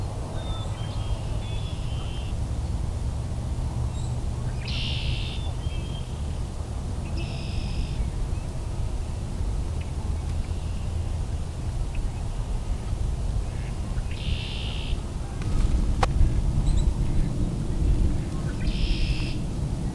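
A chickadee's clear whistled song, short sweet notes repeated about four times at spaced intervals, rising over a steady low rumble of wind or traffic.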